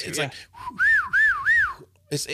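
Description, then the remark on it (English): A person whistles by mouth to imitate a gecko's call: three loud, rising-and-falling chirping notes in quick succession, with brief bits of voice just before and after. “Can you just try to recreate it with your mouth?”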